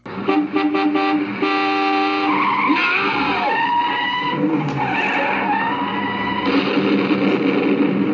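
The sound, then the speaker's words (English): A car swerves and crashes into a tree, with loud, sustained tire screeching and blaring horn tones, intense throughout, with no one speaking. “He swerves. The car love taps a tree and then explodes.”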